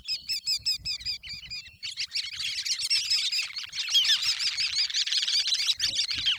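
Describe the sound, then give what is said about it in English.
A sanderling's twittering series of soft, squeaky wick-wick calls, rapid and rhythmic at first, then a denser overlapping chatter as more birds join, with faint low background rumble. “You can listen for a twittering series of soft, squeaky wick-wick calls.”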